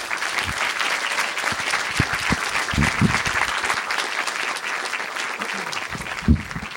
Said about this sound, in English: Now, before I pass it along to the moderators, let's give them all a big round of applause.